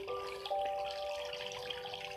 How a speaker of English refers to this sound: You can still hear the stream splashing down.